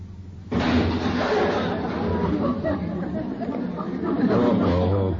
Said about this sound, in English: I just smashed the other fender.